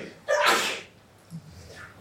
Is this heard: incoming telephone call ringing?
no